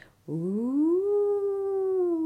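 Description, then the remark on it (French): A single wolf howl, caught from an evening Genevoix broadcast, starting low and sliding upward into a long, steady, clear note that eases slightly downward near the end, heard alone. “Il y avait une phrase d'un loup.”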